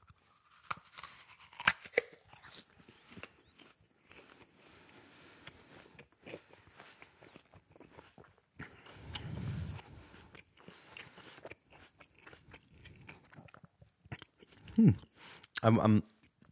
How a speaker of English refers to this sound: I'm sorry, you just had to listen in silence while I chewed. I do have table manners. You don't talk with your mouth full.